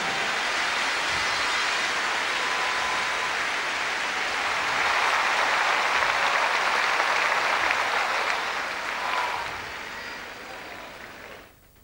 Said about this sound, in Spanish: Yo creo que se merece una mejor ofrenda de aplausos, ¿no es cierto?